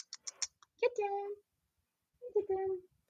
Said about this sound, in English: Kitty. There's my cat in the background. Kitty.